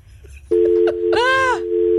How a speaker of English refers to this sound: Oh boy, we have a dial tone.